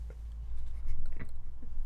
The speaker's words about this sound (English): People are just eating in front of me. I'm so hungry. Where is my pizza?